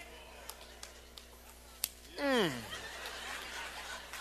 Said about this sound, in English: There's one lady that claps.